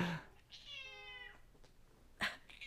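A single drawn-out cat meow, clear, rising then sliding down, followed by a brief sharp rustle and faint background noise.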